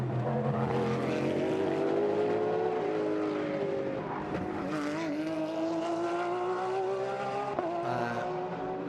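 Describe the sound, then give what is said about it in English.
Loud race car engines roar continuously as several GTP sports prototype cars corner at turn 6, one driven by Alexander Sims, their pitch sliding down on braking and climbing again through gear changes, with a hint of tire noise. “Still down at turn 6, one or two of the GTPs having a real problem on turning there.”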